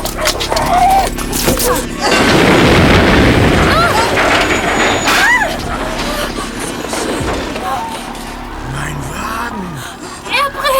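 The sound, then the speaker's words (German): A sudden, loud explosion bursts out and roars for a couple of seconds, then gives way to a rumbling, crackling aftermath with scattered voices calling out. “Das war eine Explosion.”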